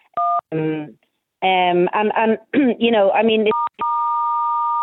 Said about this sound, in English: Just a second there. I don't know who's beeping or buzzing. Hang on a second till we try and fix that there.